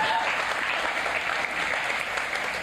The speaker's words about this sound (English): I ran 26.5 miles in one day, and I think I deserve a round of applause.